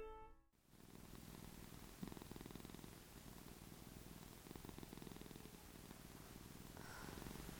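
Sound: cat purring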